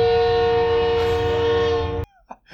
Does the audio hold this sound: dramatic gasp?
no